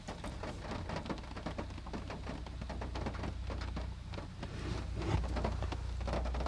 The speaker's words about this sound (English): There's definitely no one here on a rainy day.